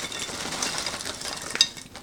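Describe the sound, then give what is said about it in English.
A steady, crackly rattle of snack chips, a product of the Philippines, many of them broken, spilling onto a plate for about two seconds, ending with one sharper clink as the last pieces land. No one speaks. “So this one, it's always nice to pour on a plate because then you can see, but look at that.”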